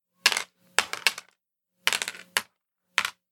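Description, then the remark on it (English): Seven dice clatter on a hard tabletop in several short bursts, a few quick rattling tumbles with brief pauses between them, fairly crisp, with no voices. “So that is 7 dice, and I've got 4 successes banked on that.”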